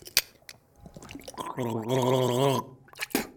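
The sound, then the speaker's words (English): Someone gargles mouthwash loudly, a bubbling, voiced warble lasting about a second, framed by a few wet mouth clicks and breaths before and after. “When I'm sad, I need a good gargle. Mouthwash.”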